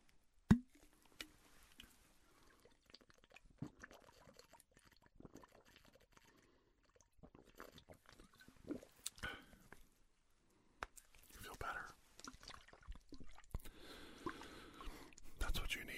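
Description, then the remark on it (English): Quiet sips of cool water with soft slurps, small trickles and swallows coming in irregular bursts, alongside faint breathy whisper-like sounds and a sharp click near the start. “Drink of cool water.”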